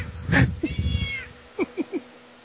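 A cat lets out a loud, drawn-out meow, followed after a brief pause by three short, quick mews in a row.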